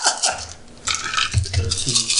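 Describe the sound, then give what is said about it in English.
A handful of dice clatter and rattle together in a quick burst of sharp clicks, scattering with bright, uneven knocking before settling, with no voices over it. “You got a whole bunch of dice.”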